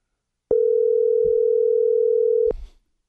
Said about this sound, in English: We have to make a phone call here. Let's see if my phone's going to... Oh, there it is. Boy, this phone works great. I love this new system.